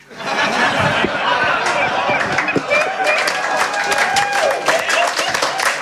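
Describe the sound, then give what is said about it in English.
Sustained audience applause, a dense, steady wash of many hands clapping that holds at an even loudness for about six seconds, with murmuring crowd voices and scattered cheers mixed in. “It got applause, so I'm going to go with it, I reckon.”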